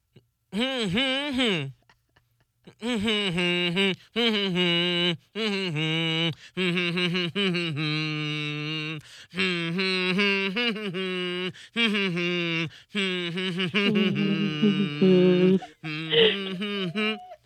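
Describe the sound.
A person hums along with a song heard through one AirPod, in a steady voice, sliding between sustained pitches in several phrases separated by brief pauses, fairly loud and alone without words.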